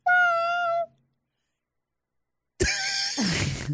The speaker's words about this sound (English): He's looking at her going, meow.